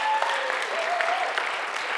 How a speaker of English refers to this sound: Let's give them a clap.